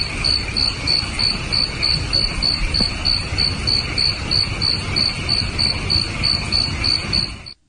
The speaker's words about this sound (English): Evening crickets and frogs.